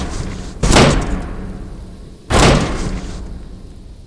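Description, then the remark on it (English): Men force open the snowbound door of Noost's Inn, striking it with two heavy, booming blows about a second and a half apart, each a loud crash that rings out briefly before fading. “When they reached it, they broke it open and tumbled inside.”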